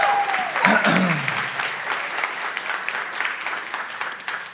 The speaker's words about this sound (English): So, yeah, huge round of applause for the pastors, if y'all don't mind.